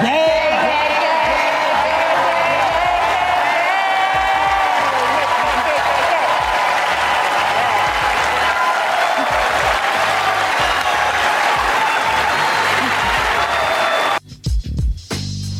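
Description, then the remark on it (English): A loud, dense wash of crowd noise from the Oscars ceremony audience, with steady clapping and scattered cheers and whoops, Denzel Washington among those shown clapping and laughing, runs continuously for about fourteen seconds, then cuts off abruptly into a few brief fragments. “I don't know if we need to rewind that, but the first person they showed clapping and laughing and celebrating is Denzel Washington.”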